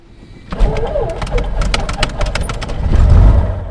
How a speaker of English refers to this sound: Many who prefer the sound of falling timber.